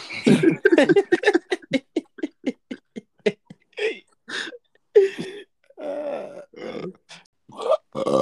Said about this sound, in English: Why are you coming on the pod and burping?